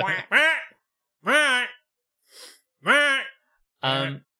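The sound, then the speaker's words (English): A voice imitates geese honking: four loud, nasal honks in an uneven sequence, with a brief breathy sound partway through and short silences between calls. “Those are some clever fucking geese. Yeah, they were just like this.”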